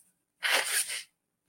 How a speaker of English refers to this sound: Now, before I go on, let me blow my nose because I'm sort of getting stuffed up.